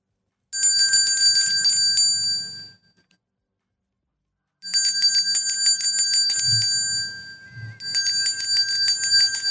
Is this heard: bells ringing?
yes